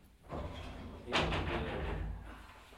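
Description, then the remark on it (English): A door closes with a single broad scraping sweep that settles into a low rumbling slide before fading out, with no one speaking. “That might have been me. Like sighing as I closed the door.”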